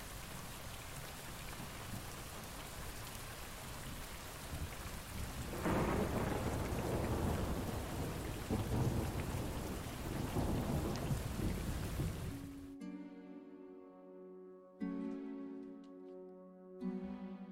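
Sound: rain pouring down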